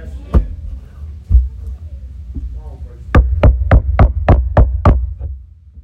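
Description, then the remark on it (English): Two separate knocks on a door, a pause, then a quick run of seven sharp, evenly spaced raps, all over a low, steady hum. “go get the door”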